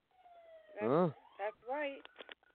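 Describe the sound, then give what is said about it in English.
An emergency vehicle siren wails in the background in a neighborhood of Los Angeles, its pitch sweeping up and down in a few quick cycles, at moderate volume without anyone speaking. “So I hear a siren in the background.”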